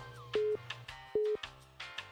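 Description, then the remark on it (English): Two short, steady electronic ringing tones sound as a phone call is placed, each lasting about a quarter second, separated by a brief gap, over a low background hum with no talking. “Come on, Scott, answer your phone.”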